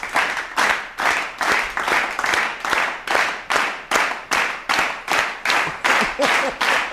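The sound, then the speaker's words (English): A crowd claps in steady unison, a loud, even beat of roughly two or three claps per second that keeps going throughout, with a rowdy audience energy like a chanting clap. “I figured out a reason for the chanting clap.”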